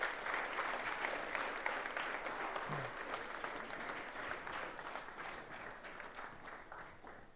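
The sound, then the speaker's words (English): Sustained applause from an audience welcoming guests up to the front, a dense steady patter of many hands clapping at an even level throughout, with no voices standing out. “Would you give them a warm welcome up to the front as they come up and join us?”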